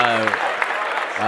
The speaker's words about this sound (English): Well, real quick, yesterday, because we didn't have a show yesterday, but yesterday was actually the 3-year anniversary of the Urban X podcast. Clap that up. Three whole years. 3 years.